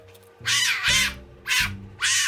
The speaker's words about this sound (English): In particular, there was this little fennec fox that's a desert fox. It just screamed and wailed and said everything it had to say at high pitches.